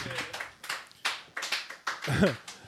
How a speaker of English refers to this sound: Round of applause. Yeah. Thank you so much.